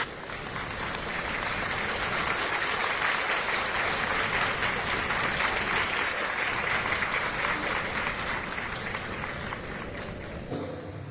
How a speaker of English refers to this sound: Give a clap of praise unto the Lord. Give a clap of praise unto the Lord. Give a clap of praise unto the Lord.